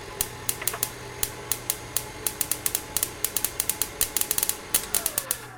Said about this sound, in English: I found a tassel. A little tassel that we actually were dragging across the inside of the piano with the microphone in pretty close to that.